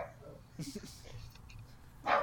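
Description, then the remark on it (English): A dog barks excitedly in a few short, sharp bursts, with a louder bark at the end, over a low murmur of background voices. “I think this dog's very excited about Baku in 2 weeks' time.”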